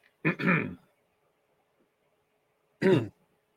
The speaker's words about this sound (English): You know how hard it is to like have to cough, but like you also can't, because you can't mute the mic because you're playing the spoiler warning. Yep. I don't know what's going on. I've had one heck of a day with like with my throat.